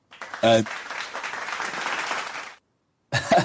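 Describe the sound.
A burst of applause for award winners, dense steady clapping for about two and a half seconds before it cuts off, with a brief voice cutting in at the start and again after the clapping stops.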